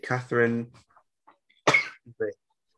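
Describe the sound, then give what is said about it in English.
A single abrupt sneeze bursts out, loud and breathy, after a short stretch of muffled voiced sounds, followed by a brief vocal murmur before quiet returns. “Just sneezing in the background there.”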